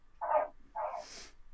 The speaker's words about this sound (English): We might have a third party here. It's the frog. Pet frog wakes up here.